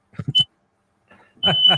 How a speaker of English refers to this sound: Oh, what's that sound there? Oh, I think we got a smoke alarm going in the back. Just a second.